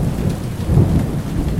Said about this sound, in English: Not long after leaving the harbor, the boats ran into severe weather. And as they got further into the Atlantic Ocean, the wind, rain, and waves got even stronger.